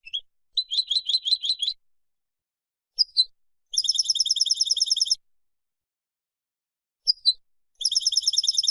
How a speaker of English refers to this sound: Well, we're into double figures now, and very often we're into double figures of this bird, the goldfinch, in our gardens.